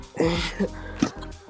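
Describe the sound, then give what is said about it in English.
A voice imitates a fake, dry cough: a couple of short, forced, throaty bursts, with no words spoken. “Like, all you really need is maybe you can crack a few jokes once in a while instead of doing your little dead cough every single 5 minutes.”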